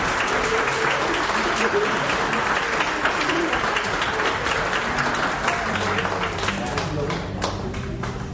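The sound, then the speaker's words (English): An audience at St. Paul claps for children being lifted up as new members, in sustained, steady applause that stays loud and dense for the whole stretch, with a murmur of voices mixed into the clapping. “I'd like you to lift these children up so everybody sees them and give them a round of applause.”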